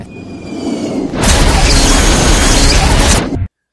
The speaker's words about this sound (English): I get this urge to every once in a while when I'm like editing a podcast to just, edit in like the sound of like a car crash. or like a plane exploding, like from like with inside the plane.